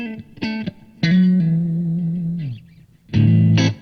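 Electric guitar played into input one of a tube combo amp with reverb: short strummed chords, then a long sustained note that rings and decays, ending with a couple of loud chord stabs, all bathed in spacious echo.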